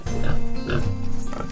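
A pig grunts and oinks in a quick series of low, nasal snorts, fairly loud, with no voices in between.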